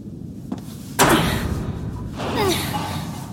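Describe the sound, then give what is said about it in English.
Someone tries to open a heavy jammed door that won't budge, giving a loud thud followed by rattling, scraping strain and a second dull knock, fairly loud. “That door up ahead looks jammed. Where do I go? Please try opening the door.”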